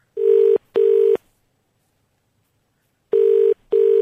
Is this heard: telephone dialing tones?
yes